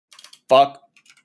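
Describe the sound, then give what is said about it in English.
Quick, light keyboard clicks tap in short bursts during a typing test, briefly interrupted by a loud voiced exclamation before the typing picks up again, soft. “Wow, that's weird that they would put that in the typing test.”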